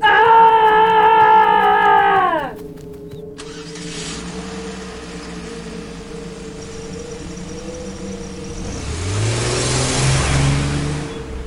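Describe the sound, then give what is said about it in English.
A car engine revs high, drops to a lower steady drone, then roars up again as the vehicle accelerates away fast, its pitch climbing through the gears. Fairly loud, with no voices. “This is enough to make him run to his car and get out as fast as he could.”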